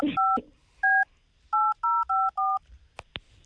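Six clear touch-tone beeps as a phone number is dialed, one short tone, a pause, then five quick tones in a row, followed by two sharp clicks.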